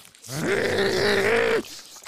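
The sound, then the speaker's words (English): A person gives a loud, sustained growling roar, imitating a lion savaging its prey, a dead giraffe. It rises, holds steady for over a second, then cuts off abruptly. “Like a lion in those nature documentaries.”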